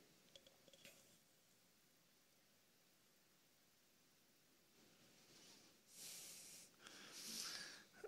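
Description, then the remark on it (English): Sand is poured into a cup, a soft granular hiss that swells in two short bursts near the end after a quiet stretch, with no talking. “If you're taking notes, the first cup, it's the cup of isolation. And I pour in this cup here.”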